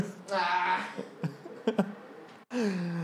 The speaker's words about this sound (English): cat ate something and now she's trying to cough it up.